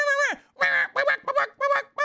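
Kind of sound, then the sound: vocal imitation, voice imitating chicken clucking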